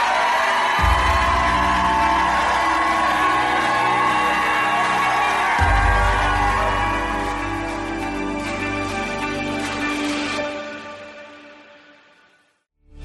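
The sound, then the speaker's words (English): A large crowd shouts, whoops and cheers loudly and continuously over booming music with a deep bass drone, the roar holding steady before fading out near the end. “Jump up to your feet and shout like you never shouted in your life.”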